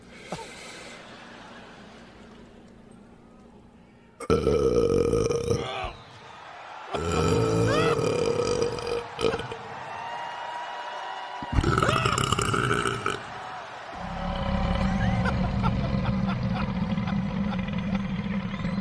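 A series of long, loud, deliberate burps in a burping contest, several drawn-out belches in close succession, rumbling and guttural, separated by brief pauses with some low background noise.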